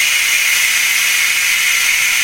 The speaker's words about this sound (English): Oh, wow. Big hiss from the pneumatic brakes when I turn the brakes off.